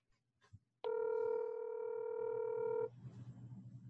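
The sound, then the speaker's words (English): A single steady telephone ring tone from an unanswered call sounds for about two seconds, clear as if heard through a handset, then cuts off, leaving faint low background noise with no answer. “Let's try him again. Okay. Maybe he's got a bad connection. He probably just couldn't get to the phone in time.”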